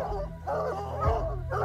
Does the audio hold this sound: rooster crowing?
no